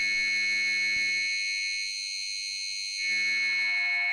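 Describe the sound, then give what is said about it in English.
A steady, buzzy synthesizer drone of noise filtered with the width turned down to around 11 o'clock, with bright high tones held throughout. About halfway through, the lower rumble drops away for a second before returning. No voices are heard. “So we've kind of like created our own, you know, tone, noisy kind of drone.”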